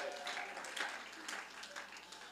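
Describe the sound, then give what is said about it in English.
An audience at a worship service claps together in a steady, dense patter of many hands, fairly soft, continuing throughout without any talking. “You ought to clap your hands and thank God that he is our shepherd.”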